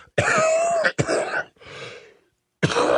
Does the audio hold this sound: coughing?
yes